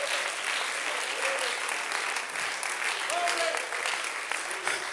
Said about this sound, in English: Oh, let's give a hand clap to the Lord. Yeah.